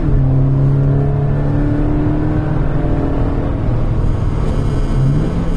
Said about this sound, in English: And we noticed a nice little blip on the throttle on the downshift a moment ago that sounded nice. 2.4 kilometres. Okay. I just wanted to get it to do it again. There it was.